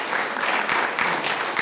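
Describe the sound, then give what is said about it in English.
Steady applause from an audience, a dense wash of many hands clapping at a fairly even loudness throughout, with no voices standing out. “All you romantics can clap for yeah. that.”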